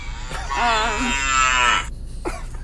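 A cow gives one long, drawn-out moo, loud, with a wavering pitch, followed by a couple of brief faint noises and quiet background.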